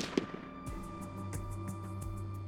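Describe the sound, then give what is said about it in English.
A single sharp gunshot, representing the shot with which Lee Harvey Oswald assassinated President John F. Kennedy on November 22, 1963, cracks out near the start, followed by a low rolling rumble and a series of faint, evenly spaced crackles fading into the background. No one speaks. “On November 22, 1963, a single gunshot changed the course of American history when Lee Harvey Oswald assassinated President John F.”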